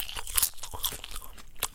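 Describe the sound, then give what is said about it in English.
Crisp crunching and chewing of popcorn, a quick irregular series of brittle bites and munches with no talking. “As you can tell, I really like popcorn too.”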